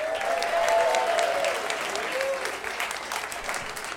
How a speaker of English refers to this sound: Round of applause out there.